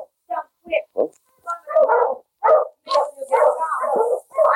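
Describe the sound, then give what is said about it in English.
A dog stranded on a piece of ice on a river near Selkirk barks and whines in a string of short, excited bursts, fairly loud, with a steady hiss joining in behind the later yelps. “But, Sergeant Preston, my dog's out there on that piece of ice.”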